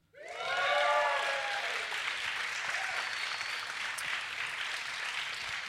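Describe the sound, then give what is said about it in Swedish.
An audience bursts into loud, steady applause with high whoops and cheers at the start, then keeps clapping in a dense, even wash until the end. This is a live audience at a recording during the Lund Comedy Festival, in a grand room of Stadshallen in Lund. “Kan vi få höra publiken?”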